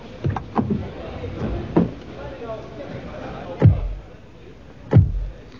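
Several heavy, muffled thumps of car doors shutting as people get into a car and sling a bag in the back, a quick cluster early on and then two more spaced seconds apart, with shuffling and rustling of people climbing in between them.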